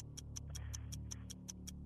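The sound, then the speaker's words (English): A game show's 60-second clock ticks steadily and quickly, about five crisp ticks per second, over a low humming musical bed. Nobody speaks. “please give me 60 seconds on the clock.”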